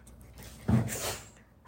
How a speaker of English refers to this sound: We started saying the words of food and then our dog started losing his mind and running around and sniffing and is trying to find food.